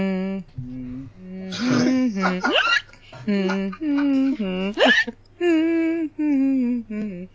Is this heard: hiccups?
yes